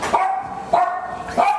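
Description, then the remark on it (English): A dog barks three times in a steady rhythm, each bark sharp, with a slightly yelping, tonal quality and short pauses between them. “Boa's got a lot to say. Yeah. She's like, when are you going to do the one for dogs?”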